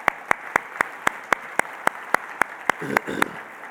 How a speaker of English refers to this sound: All right, would you please give these folks a round of applause, please?